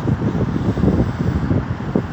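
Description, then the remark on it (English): Steady low rumble of street traffic, with cars and bikes going by amid gusty, wind-buffeted noise. No distinct single pass stands out, and no one speaks. “Let this nice couple walk by. Cars. bikes.”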